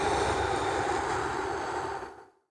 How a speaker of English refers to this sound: Now drop our tongue, round our lips, and exhale. Again, inhale. Drop the tongue and exhale. Inhale. Let's Drop the tongue, exhale.